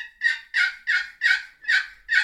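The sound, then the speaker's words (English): Six soft, evenly spaced turkey yelps scraped out on a box call, each a raspy, friction-edged note in a steady rhythm, clear with no talking. “I use a box call a totally different way.”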